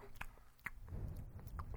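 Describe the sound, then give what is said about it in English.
Chewing spicy food, with a few sharp crunchy bites spaced out over a steady, wet mouth sound. No one speaks, and the food sounds fairly loud and intimate. “if one of you were to take the chewing and swallowing sounds from this episode and make, song.”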